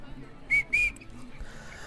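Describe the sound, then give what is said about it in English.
A person whistles two short, bright notes in quick succession, fairly loud, the second slightly longer, over a low background hum. “Speaking of, give him a whistle.”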